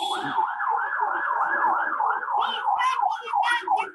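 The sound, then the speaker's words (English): A police van siren wails loudly and steadily as it goes by, a rapid, repeating rise-and-fall warble that keeps cycling for the whole stretch. “On the 29th of April, let's just let the pigs in a blanket go by.”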